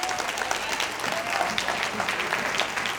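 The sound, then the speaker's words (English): A church audience standing up, some with hands raised, applauds steadily, dense overlapping clapping with no clear breaks, a loud, even wash of hand claps for the whole stretch, with faint voices mixed beneath it. “They standing up clapping.”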